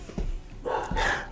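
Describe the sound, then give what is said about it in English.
A dog barks twice in quick succession, the sharp yelps fairly faint, with no talking over them. “This dog, Lordy, help me.”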